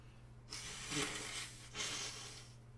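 Someone with a stuffy nose blows their nose at home in two long, breathy, hissing blasts, the first slightly longer, with a brief pause between them and no talking over a low steady hum.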